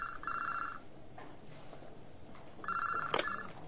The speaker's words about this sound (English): We were in the office all next day, Sunday. At about 7:15 in the evening, the phone on my desk rang.